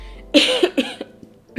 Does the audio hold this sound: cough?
yes